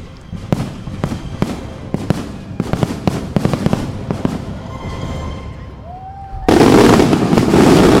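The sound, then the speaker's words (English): A rapid barrage of loud fireworks bursts, booming and crackling in quick succession, then a whistling rocket rises before a dense, roaring wall of explosions erupts at the finale. “Signature fireworks at the end. That's so loud.”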